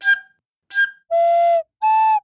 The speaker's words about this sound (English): Inside the burrow, Little Hedgehog was playing her new recorder.